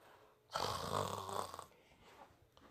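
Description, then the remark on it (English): A person imitates a snore, one long, loud, rattling inhale lasting about a second, then it fades into quiet breathy noise. “That's how bitches be snoring and shit.”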